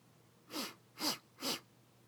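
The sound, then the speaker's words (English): Three short, sharp sniffs through the nose at a cold breeze coming in off the ocean, evenly spaced about half a second apart, each a breathy hiss of air with no talking around them. “That were me sniffing.”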